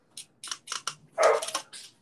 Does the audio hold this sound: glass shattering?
no